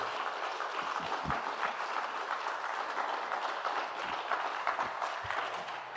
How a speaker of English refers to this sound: And you're going to come up to the stage and you're going to give her a warm applause to welcome